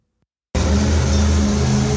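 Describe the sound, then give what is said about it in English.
After a brief silence, a monster truck engine suddenly roars to life and revs loudly and steadily for a Monster Truck Mayhem event in Knoxville, Tennessee, a deep, rumbling growl that fills the foreground with no voices. “Sunday, Sunday, Sunday, Monster Truck Mayhem!”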